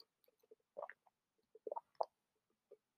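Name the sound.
gulping water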